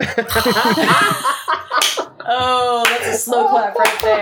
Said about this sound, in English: Oh, that's a slow clap right there. Well done.